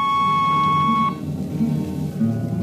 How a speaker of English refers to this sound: On a Hawk-class clunker in those days, damping was done by hand with a multiplying vernier and a danger peeper. Jetman slept with one ear tuned to that, and as long as the peeper ticked off slow and steady, we knew the ship was safe.